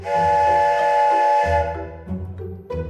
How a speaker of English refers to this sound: I have a nice shiny whistle I can give you. You got a what? A whistle. And I will take out a signal whistle and blow on it.